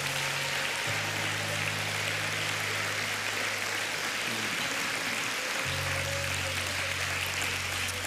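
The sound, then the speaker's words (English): An audience at a church service claps hands in praise to the Lord, a dense, steady wash of clapping that holds for about eight seconds, with low sustained tones droning underneath. “As they're ministering to these at the front, let's just give the Lord one more hand clap of praise, would you?”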